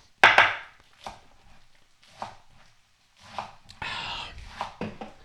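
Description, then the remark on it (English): Quick knife chops on a cutting board, a sharp burst of strikes at first, then scattered irregular taps and scraping, with soft rustling between. “chopping things up like it there's no tomorrow.”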